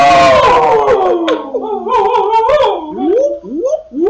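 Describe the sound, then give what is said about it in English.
People mimic whale calls with long, gliding, moaning voices: a low falling groan, then overlapping wavering tones and a series of rising swoops toward the end, loud and unbroken. “Okay, now we're making whale noises.”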